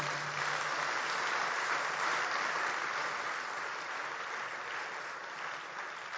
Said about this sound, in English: It's a good place for you to clap your hands for the Lord.